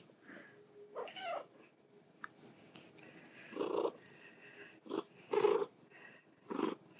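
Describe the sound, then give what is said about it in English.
A wet female cat named Anna vocalizes repeatedly and loudly, letting out a series of short, strained meows and yowls at irregular intervals, with quiet pauses between calls and no talking. “Oh, there's my cat. What's wrong, cat?”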